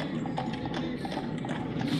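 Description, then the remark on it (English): Steady clip-clop of hooves as two large black horses trot in a quick, even rhythm, drawing a jet-black carriage. Its metal wheels roll on the ground with a continuous low rumble as it approaches from the south through fog and mist. Moderately loud throughout with no voices. “Just then, everyone begins to hear the sounds of hoofbeats and metal wheels rolling upon the ground from the south.”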